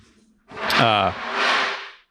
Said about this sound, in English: these chairs are so goddamn loud. that's my only note.